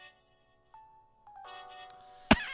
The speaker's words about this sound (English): That was my ringtone.